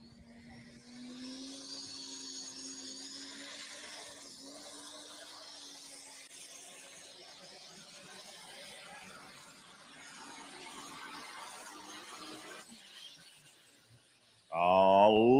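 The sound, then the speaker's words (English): Doug Meisinger's diesel superstock tractor, Scrappy, out of Goodland, Kansas, roars through a pulling run of 338.62, a steady low engine drone with a hissing, whining top that holds for about thirteen seconds before dropping off. A sudden loud burst follows. “Diesel Superstock time. Doug Meisinger, longest pass of the weekend last night with this tractor.”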